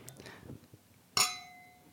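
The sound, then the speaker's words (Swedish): A single bright clink of champagne glasses touching in a toast, ringing on with a clear sustained tone that slowly fades, preceded by faint rustling and soft movement. “Ja, och, skål på det. Skål.”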